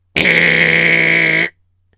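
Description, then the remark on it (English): A loud, steady electric door buzzer at a house sounds once for over a second to let a visitor in, a harsh, flat, reedy tone that starts and stops abruptly, with nothing else around it. “Let me buzz you in.”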